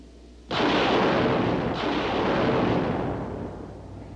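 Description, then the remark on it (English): Small unmanned rocket ships, camera drones, launch from a spacecraft orbiting Mars with an abrupt blast that swells into a loud, hissing roar, a second surge following a moment later before the rumble slowly fades. No one speaks. “Those small unmanned rocket ships you see leaving us will shortly be sending back television pictures as they fly near the surface, but we'll continue our view from orbit also.”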